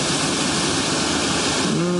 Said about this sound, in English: I hope you can hear that wonderful creek going next to me, just putting us into a nice chilled out state.